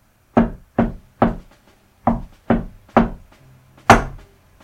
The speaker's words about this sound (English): So we approach the door, and somehow we know the secret knock.